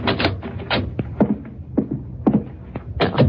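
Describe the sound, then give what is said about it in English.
A heavy cellar door at the back of a house being opened, with a series of loud wooden clunks, rattles and scrapes coming in uneven bursts over a few seconds and no voices. “That's the cellar door.”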